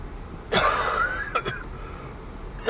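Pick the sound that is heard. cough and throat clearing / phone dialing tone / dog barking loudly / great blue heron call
cough and throat clearing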